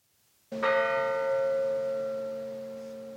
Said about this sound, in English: However, Dr. Weissman woke up to his clock loudly chiming once, and the room went deadly silent